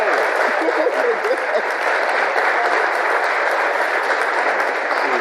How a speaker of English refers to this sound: Oh. It's applause. I wasn't sure at first if it was zombie apocalypse happening.